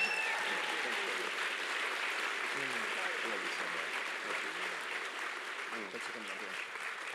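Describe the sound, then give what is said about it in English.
A crowd applauds the speakers' supporters at home steadily for several seconds, a dense, continuous wash of clapping at an even loudness, with faint voices murmuring underneath. “Let's please give them a round of applause.”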